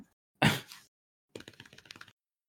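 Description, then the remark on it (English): A single broad slap is followed by a quick run of about eight soft, dull taps as fingers drum on a lap, steady and fairly quiet, with no voices. “I'm literally just drumming on my lap.”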